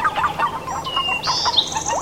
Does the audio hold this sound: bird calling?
yes